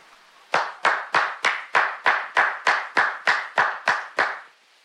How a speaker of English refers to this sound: Loud clap. Clap again.